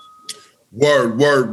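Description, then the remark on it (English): A voice loudly imitates a notification bell chime with a sung, ringing "bing," drawn out twice in quick succession after a brief quiet moment. “If you watch this for the first time and you haven't subscribed, go ahead, click the little button down there, turn the little bell on. Bing!”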